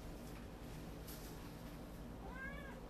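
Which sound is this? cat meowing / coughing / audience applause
cat meowing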